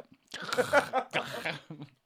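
Wet chewing on a very chewy, sticky, tangy candy, with a few squelching, smacking bursts of mouth noise over about two seconds before it trails off.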